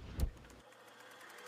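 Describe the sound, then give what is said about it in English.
About 1,000 feet of motion picture film (16,000 separate photographs) whirs steadily onto a reel with a quiet, rapid clicking rhythm, starting after a brief thump. The mechanical winding stays soft and even, with no voices. “Let's tidy up this tangle of film by putting it on a reel.”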